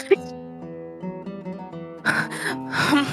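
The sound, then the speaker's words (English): A person imitates heavy breathing with two loud, breathy huffs near the end, following a stretch of soft sustained tones in the background. “She's still like firmly like keeping the door shut on them, and just like heavy breathing.”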